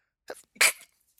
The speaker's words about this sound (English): Bless you.